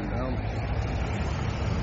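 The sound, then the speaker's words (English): A big truck rumbles past, a loud, steady low roar of engine and road noise that holds throughout, with a muffled voice faintly underneath. “Listen to this big truck going past.”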